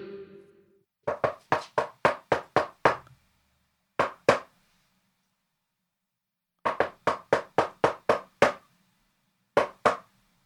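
Crisp knocks on a door in quick patterns: a fast run of about eight raps, then two spaced knocks, with the same sequence repeated after a pause. Loud, with no talking.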